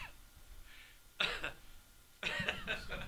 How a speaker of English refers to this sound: Yes, yeah, man. That was a live cough on air. That was good stuff.